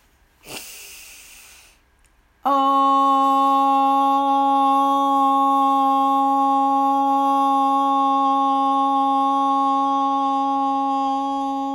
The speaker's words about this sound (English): We'll place our hands right on our body where we lifted them up, and we'll end with the tone Om. So deep breath in, hands on your body, and Om.